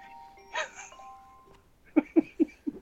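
A 6 o'clock dinner bell clangs four times in a quick, steady rhythm, loud, after a brief ringing tone with no voices.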